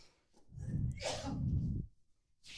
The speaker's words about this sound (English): So, let me just have a cough for this. To give an example, in your example that you chose, I just need to have another cough.